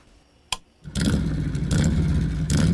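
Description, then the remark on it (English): A brief click in near-silence, then a motorcycle engine roars to life and keeps rumbling loudly, with a couple of throttle revs swelling over the steady idle. “It's hard to be without your bike.”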